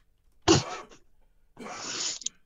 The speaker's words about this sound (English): Excuse me. I need to cough. Sorry.